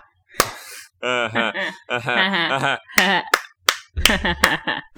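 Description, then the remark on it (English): Sharp, loud hand claps ring out in an irregular burst of about six, scattered between stretches of animated voices and laughter. “Look at me peeking with my claps.”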